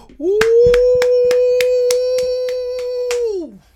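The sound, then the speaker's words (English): About ten quick, evenly spaced hand claps ring out under a long, steady, loud vocal whoop that holds one pitch and then drops off at the end. “Let's clap it up, bro.”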